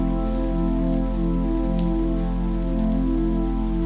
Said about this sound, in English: The wind is blowing a bit more, and light sprinkles of rain occasionally tap on the ground.